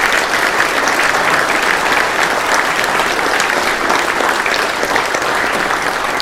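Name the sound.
audience applauding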